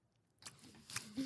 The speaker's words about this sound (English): Chew with your mouth closed. I'm purposely doing it just to make you mad.